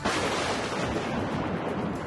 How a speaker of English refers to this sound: Oberchuck hastily presses some buttons on the remote. You both vanish, with the sound of a large thunderclap.